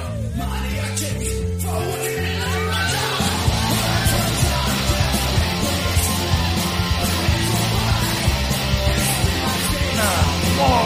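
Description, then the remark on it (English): Loud, fast speed metal music by a Christian speed metal band plays continuously, with driving low bass and drums, dense distorted guitars filling the upper range, and shouted vocals over a relentless rhythm. “And so one time, my friends and I, we went to this speed metal Christian concert.”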